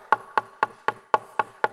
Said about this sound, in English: "Behold, I'm standing at the door," at your door, the door of your life, "and I'm knocking."